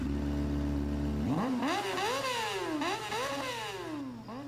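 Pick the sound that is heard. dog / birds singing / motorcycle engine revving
motorcycle engine revving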